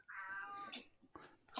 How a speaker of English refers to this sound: Okay, who's got the cat that's meowing? Me. That's not me. That's Oliver. Oh, Oliver wants to go upstairs.